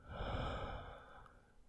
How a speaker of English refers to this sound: Taking several slow, deep breaths can quiet racing thoughts and still our bodies. And it can be helpful to begin by taking a breath in through your nose and exhale through your mouth.